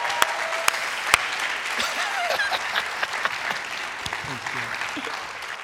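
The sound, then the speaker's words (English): A large church audience at New Life Church applauds steadily to welcome a guest speaker, a dense wash of clapping with a few sharper claps standing out and faint cheering mixed in, sustained and fairly loud throughout. “You guys clapped more just in the last couple of minutes than most churches do in the whole year.”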